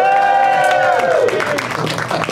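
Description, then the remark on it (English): A loud crowd cheers, with a sustained high whoop that slides downward, then breaks into a dense wash of clapping and shouting that carries on steadily to the end. “We're going to cut in another crowd doing that and then come back to me going, back once again at Flappers in Burbank!”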